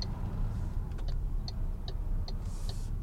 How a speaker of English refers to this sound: That's an indicator click and a half. That is a proper click. Listen to this.